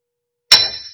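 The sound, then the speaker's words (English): A single sharp metallic clang, like a hammer striking an anvil, hitting loud after a moment of silence and leaving a bright ringing tone that slowly fades. “The picture being something like a blacksmith hammering a metal horn on an anvil, smashing it, breaking it to pieces.”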